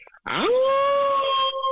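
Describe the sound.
A person imitates a wolf howl: one loud, sustained vocal wail that swoops upward in pitch, then holds a steady, slightly wavering tone for over a second.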